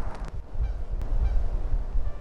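A flock of geese looking for lunch in the grassy area beside a waterfront trail along the Willamette River gives a few faint honks outdoors, half buried under steady low wind rumble against the microphone. No one speaks.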